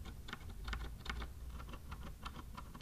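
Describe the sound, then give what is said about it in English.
A rapid run of keystrokes on a mechanical ergonomic keyboard, steady, each press giving a scratchy, very hollow clack from metal-on-metal contact. No one speaks. “Hear the metal on metal contact? It's kind of gross a little bit. And it's very hollow.”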